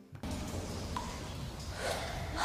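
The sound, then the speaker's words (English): Breathing through a water breathing machine about 1,000 feet underwater: a steady, rough hiss of air that starts abruptly and swells louder toward the end, with no voices. “I'll give you a water breathing machine.”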